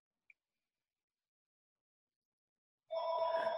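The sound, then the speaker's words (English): After a near-silent stretch with one faint tick, a telephone starts ringing: a steady, bright electronic tone, fairly loud, with no one talking. “Sorry, I just was trying to avoid the phone for a second.”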